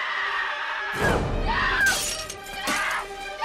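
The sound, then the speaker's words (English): A mirror with writing in lipstick on it is punched and smashed with a loud crash, followed by a couple more heavy blows and the jangle of breaking glass. “The killer has written soon in lipstick on her mirror, and she punches it. Yeah, like, smashes it.”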